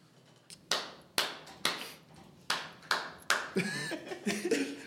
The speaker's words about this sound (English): So when y'all start back and back up, just do like a big clap so I know.